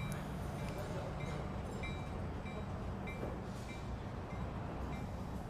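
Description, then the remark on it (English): A train at a station platform in Natick: a steady, loud rumble of rolling carriages, with short, thin high-pitched whistle-like tones cutting in a few times over the noise. “The train whistle blew, and it was 4:30 p.m. on a normal Wednesday.”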